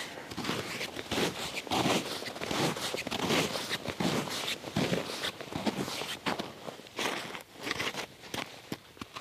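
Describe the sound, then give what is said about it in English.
Steady footsteps crunch over icy, crystalline ground, each step a bright, gritty scrunch, following an even walking rhythm with slight variation in texture from step to step. “The crunch of ice crystals. And one of the things that amazes me is how much it just changes from one footstep to the next.”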